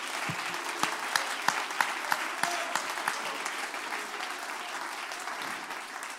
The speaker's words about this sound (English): Clap your hands and give God praise tonight.